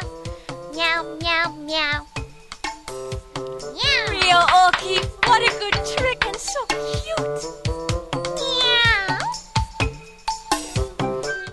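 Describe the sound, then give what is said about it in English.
A person's voice imitates a cat's meow a few times, drawn-out and sliding in pitch, over a steady tonal background with sharp tapping sounds throughout. “Meow. Meow. It's like this. Meow.”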